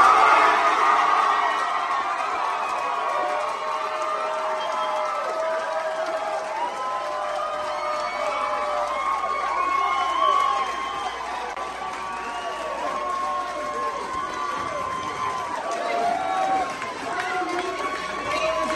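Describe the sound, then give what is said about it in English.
A large crowd of parents at a school board meeting in Chino, California, cheers and shouts continuously as a policy vote comes through, many voices overlapping into a loud, steady roar with scattered whoops and clapping that holds at full strength throughout. “It's 45 seconds or more of solid cheering.”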